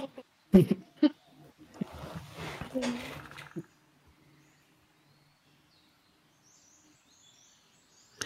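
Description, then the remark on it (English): A gray raven arrives with a brief flurry of flapping and rustling over a few seconds, and then everything falls quiet apart from faint chirps. “The sound of a bird arriving.”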